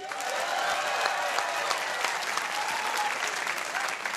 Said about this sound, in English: Now, to be clear, I instigated that applause for the 300th episode, not for me. But now, this is the applause for me.